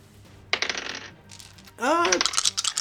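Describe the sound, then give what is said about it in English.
Dice clatter across a table in two bright, rattling bursts, a short tumble followed by a louder, longer roll with a brief ringing tone near its start. “Alright, now I gotta roll for these bird boys.”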